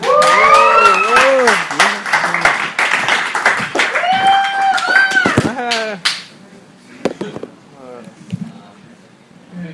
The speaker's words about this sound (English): Guys, coming up to the stage next, please keep that applause coming for one of the most unique comedy minds in Houston.